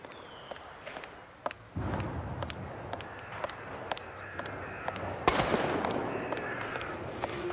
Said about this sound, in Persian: صدای ترقه ها سکوت خیابان را می شکند.